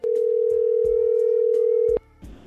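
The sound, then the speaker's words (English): A phone line rings as a call is placed to a woman: one long, steady electronic ring tone lasting about two seconds, loud, with a few soft clicks, then it cuts off abruptly into quiet line noise. “So mute your phone and we'll call her right now.”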